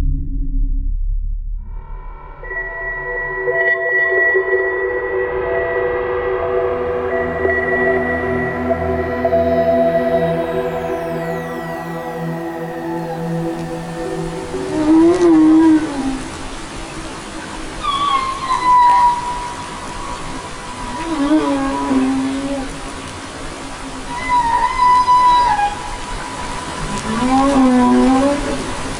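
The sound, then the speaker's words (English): Whale song recorded underwater by a Monterey Aquarium project: long, droning tonal moans give way to sweeping, wavering cries that rise and fall every few seconds, fairly loud but with a slightly distant, echoing quality. No one speaks. “How would you like to start out with whales and end up with aliens?”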